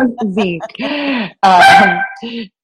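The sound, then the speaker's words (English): A yoga teacher's dog, kept as a yoga mascot, lets out a quick series of loud, yelping barks with a honking, whine-like tone, ending in a sharper, louder bark and a short final yip. “is my yoga dog mascot.”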